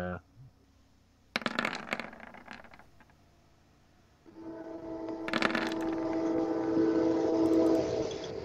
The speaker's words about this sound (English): Train keep on coming. Is that in real life somewhere?